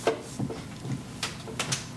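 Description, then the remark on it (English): A chair gives off a few short, dry cracks and creaks at irregular intervals, with quiet pauses between them and no one speaking. “Oh, I hate this chair.”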